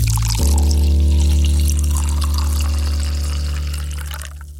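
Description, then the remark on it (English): Inkspot's St. Wrytham Lager being poured into a glass, a steady, continuous glugging stream with foamy hiss that carries for several seconds before tapering off at the end, with no voices. “So that's Inkspot's St. Wrytham Lager. Cheers!”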